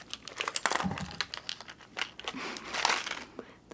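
Quiet bursts of hissing mist from a small spray bottle of water that is running low, with a longer spray near the end, mixed with crinkly clicks and taps from handling the bottle.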